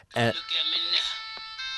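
A cell phone ringtone, one of Billboard's most downloaded ringtones of the year, plays a song, a bright, tinny electronic melody of sustained high notes that opens with a short, sharp burst and stays fairly loud throughout.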